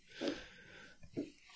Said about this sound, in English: Somebody chewing on a bone? An antler. Good ear. Okay. And not only... Well, that's an antler on wooden floor, I'm guessing. Yeah, that's exactly what it is.